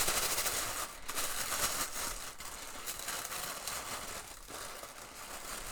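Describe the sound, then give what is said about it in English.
Continuous crinkling and rustling of blue and green tissue paper being pulled and handled one-handed while a gift of clothing is unwrapped, a dense crackly texture with a few brief pauses and no voices. “There's a couple different colors of tissue paper.”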